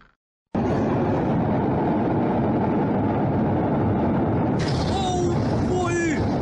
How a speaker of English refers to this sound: On August 4th, a devastating explosion rocked Beirut, Lebanon. The blast killed more than 100 people and injured thousands. The explosion likely originated at a warehouse that stored thousands of tons of ammonium nitrate, a fertilizer chemical.